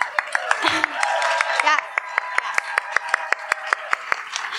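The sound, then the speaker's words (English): An audience breaks into a round of applause for the educators in the room, a steady, evenly spaced run of sharp claps standing out over a broad wash of crowd noise and a few raised voices. “Round of applause for all the educators in the room.”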